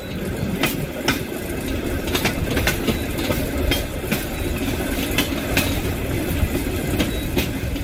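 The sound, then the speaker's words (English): A pedal-powered rail car, powered by two people by foot, rolls steadily along the tracks, its wheels clicking at irregular intervals over a continuous low rumble, fairly loud with no voices. “powering a rail car by foot, and we'll share more with you in a few seconds.”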